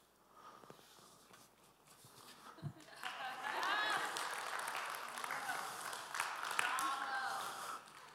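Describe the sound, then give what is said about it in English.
Quiet murmuring gives way to a swell of audience clapping that holds steady for several seconds, mixed with cheering voices and shouts from the crowd. “I love you guys clapped.”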